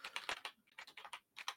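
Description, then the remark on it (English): Rapid, uneven clacking of computer keyboard keys as someone tries to log into iTunes, a dozen or so quick keystrokes in bursts with brief pauses, soft, with no voices. “I can't hear your keyboard clacking.”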